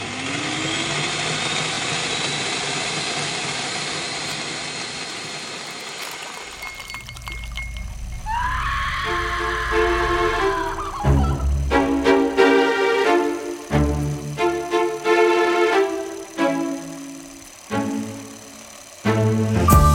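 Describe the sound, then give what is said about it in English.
A loud power tool cutting through meat for deboning whines steadily for several seconds, pitch creeping upward, then cuts out into a jumble of grinding, squealing tones and wet, choppy bursts. No voices. “Now, folks, don't forget to wear your protective goggles when you're working with power tools in the kitchen, shed, dungeon, or wherever you find yourself preparing this fully grown adult male.”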